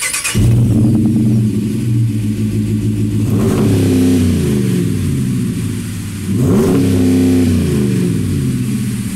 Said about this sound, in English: The Attack is the most aggressive sound and it's badass. If you listen to the beginning of the show, which of course you did, you know how good it sounded on that 5.7 liter Hemi truck. Why don't we just play that clip one more time?